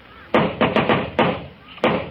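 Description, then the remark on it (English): Loud knocking on a door, about six sharp raps in an uneven rhythm: a quick cluster of four, then two more spaced out, each ringing briefly before the next. “In a minute, he'll knock on that door.”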